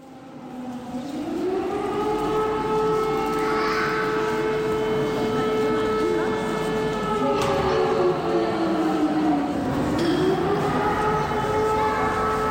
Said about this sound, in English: I'm sitting in the station in Vinnytsia, waiting for the night train to Odessa, and for about the fourth or fifth time today, the air raid siren is going off.